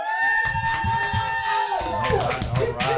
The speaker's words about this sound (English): But we also have a live studio audience today. If the studio audience can cheer and say something.